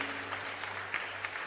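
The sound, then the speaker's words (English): Scattered audience applause, a dense patter of many hands clapping at a steady pace, fairly soft, with a faint low hum underneath and no voices. “Those who clap, they don't come.”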